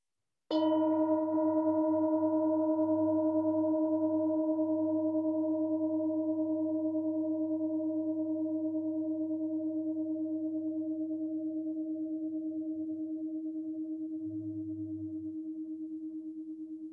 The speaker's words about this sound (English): So the teacher is going to ring a bell. You're going to close your eyes when he rings the bell. Breathe normally and listen closely to the sound of the bell. Open your eyes when you can no longer hear the bell.